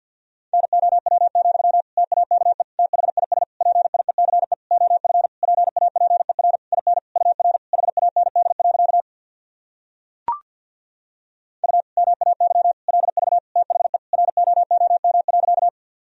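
Fast Morse code at 50 words per minute in a single steady mid-pitched tone, keyed in rapid on-off bursts for several seconds, then a short pause with a faint click before the beeping resumes.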